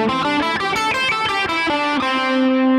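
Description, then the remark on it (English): Distorted electric guitar plays a quick, steady run of picked notes in A minor pentatonic, then settles into one held, sustained note on the fifth fret of the third string, loud with no voices. “So instead of just playing, for instance, the fifth fret of the third string here, I'm going to be in A minor pentatonic for our example in this lesson too.”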